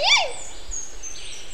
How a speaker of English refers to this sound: Today's bird note is from the Montezuma Oropendola.